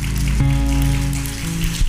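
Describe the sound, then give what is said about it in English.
A crowd at a worship service claps steadily and densely in praise of God, a loud continuous patter of many hands, with sustained low musical tones holding underneath and shifting pitch once or twice. “You should clap and praise God.”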